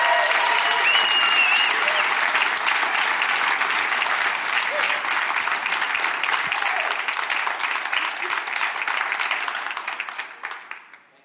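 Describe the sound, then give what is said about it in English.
A large crowd applauds loudly and steadily for about ten seconds to welcome a speaker before he says a word, with scattered cheers and whoops mixed in, before the clapping tapers off quickly at the end. “Okay, because we want to establish and create a culture of honor, and because we are people of grace, which means getting what you don't deserve, before he says a word, will you just love him with your applause and with your shoots and hollers?”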